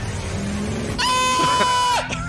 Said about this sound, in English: Shit! Donkey! Oh, right there.